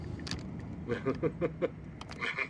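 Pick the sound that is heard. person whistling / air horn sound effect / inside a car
inside a car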